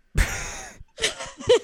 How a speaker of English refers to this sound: Sorry, I was yawning.